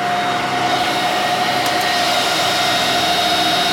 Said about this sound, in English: It's got a dual power supply. Go hook them back up. Both power supply fans are working.